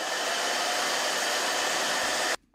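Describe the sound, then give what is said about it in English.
A Dyson Supersonic hair dryer blows with a loud, steady, hissing whoosh for about two seconds, then cuts off abruptly into near silence. It is heard on its own, with no talking. “That was the Dyson Supersonic.”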